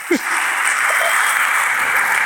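Steady applause from a crowd, a dense wash of clapping that stays loud and even throughout, with a brief voice at the very start.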